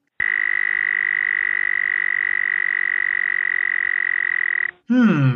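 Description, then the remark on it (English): A toad's call rings out as one long, steady, buzzing trill held for over four seconds, loud, then breaks into a brief warbling burst at the end. “What kind of a weird toad voice is that?”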